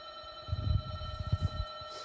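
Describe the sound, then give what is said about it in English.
A doorbell rings with a steady, sustained electronic tone lasting the whole moment, moderately loud, over low muffled thumps and rumbling in the middle. No one speaks. “Yeah, well, thank God we got a doorbell and didn't have to shoot at Wayne Jackson Studios to get us to come down.”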